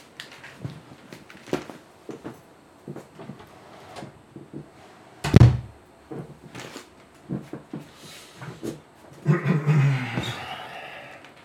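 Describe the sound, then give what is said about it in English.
An office door swings shut with one solid thud midway through, surrounded by scattered knocks, shuffles and handling noises, with a brief rumbling scrape near the end. “I'm just going to have to close my office door for 1 moment.”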